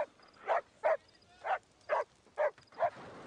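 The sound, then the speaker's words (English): A dog named Vincent barks seven times in a steady, evenly spaced series, each bark short and sharp, over a quiet background with no talking. “Vincent's barking didn't really help.”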